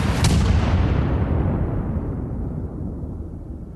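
A single loud dynamite bomb blast, thrown at police during a demonstration at the Haymarket, erupts with a sharp crack, then a deep, rolling rumble that slowly fades as the bright high end dies away. No voices.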